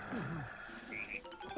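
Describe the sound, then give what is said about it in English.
A frog croaks in a string of short, warbling calls, followed by a few quick, bright chirps near the end. The calls are clear, with no talking. “Oh, hey, a frog!”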